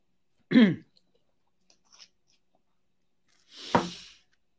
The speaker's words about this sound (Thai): สักครู่ขอเนี้ยจิบยาแป๊บนึง